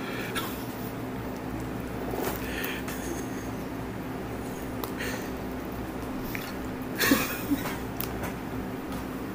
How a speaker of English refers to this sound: Oh, that was good. I took a big bite. I couldn't talk. I had to really chew that.